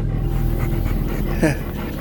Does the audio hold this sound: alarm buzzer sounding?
no